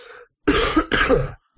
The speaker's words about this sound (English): But that was an actual cough.